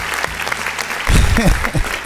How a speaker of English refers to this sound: That's my little applause, people.